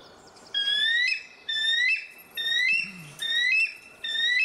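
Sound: bald eagle call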